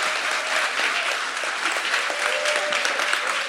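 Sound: audience applauding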